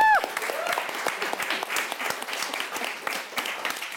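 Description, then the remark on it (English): A crowd applauds steadily, dense overlapping claps forming a continuous wash of sound that holds at an even, fairly loud level throughout, with a brief tonal sting at the very start. “A round of applause for Neil.”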